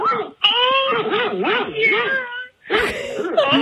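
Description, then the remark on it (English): An old male dog, heard over a phone call, vocalizes in long, warbling whines and howl-like moans, its pitch rising and falling, with a short pause before another burst of whimpering yowls. “I just called back so you can hear my old man dog.”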